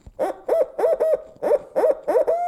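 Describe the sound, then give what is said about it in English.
A voice imitates a barred owl's eight-note 'who cooks for you, who cooks for you all' hooting call as a locator call to make a turkey gobble, eight rhythmic rising-and-falling hoots in two phrases, the last drawn out, loud, with no other sounds. “So you're going to get your 8-note normally, and this is what you learn, who cooks for you, who cooks for you all.”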